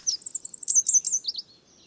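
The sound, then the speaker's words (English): A red warbler's song: a quick run of about a dozen high, bright chirps in steady rhythm, slurring into lower notes before trailing off, clear with no voices. “They're endemic to the highlands of Mexico, so to hear them, you have to venture into the humid forests of pine, oak, and fir.”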